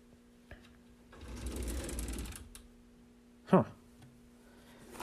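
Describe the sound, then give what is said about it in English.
A wooden table drawer slides open with a long, gritty scrape, then a short, sharp creak follows a moment later. Fairly quiet, with no talking. “I just opened a drawer in the table and found what looks to be a notebook.”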